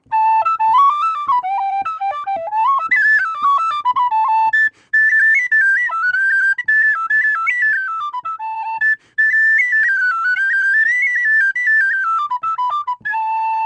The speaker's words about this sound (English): get out that whistle, what would you play? Probably a reel, the favorite type of tune of traditional musicians everywhere.